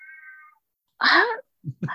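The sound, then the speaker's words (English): A pet cat in the background of a recording gives one drawn-out, clear meow after a brief steady tone fades out. Short fragments of a human voice follow at the end. “Is that your cat in the background?”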